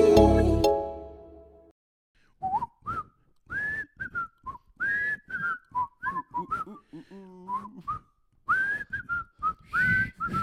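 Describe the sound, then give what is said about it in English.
After a brief loud burst of sound, a person whistles a lively tune, with quick separate notes and a few sliding pitches, pausing briefly midway before carrying on. “Did you not whistle?”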